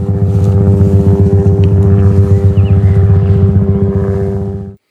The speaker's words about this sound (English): And the low hum of a passing helicopter.